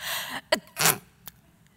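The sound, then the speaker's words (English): A breathy inhale builds into a sharp, explosive sneeze, followed by a brief sniff and quiet afterward; no one speaks. “And I said, it's when you're coughing and you're sneezing and both your nostrils are stuffed up.”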